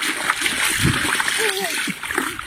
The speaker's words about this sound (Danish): Men der havde det så regnet om natten, og der var samlet sig en stor vandpyt, og alle børnene, de løb direkte hen til den her vandpyt og begyndte at hoppe og pjaske i vandpytten.